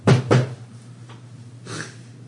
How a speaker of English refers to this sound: There's a near soft knock on the door. It gets a little louder.